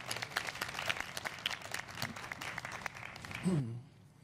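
An audience applauds, recognizing those involved over the past year, with a dense, steady patter of many hands clapping for several seconds. A voice briefly rises near the end, then the clapping cuts off into quiet.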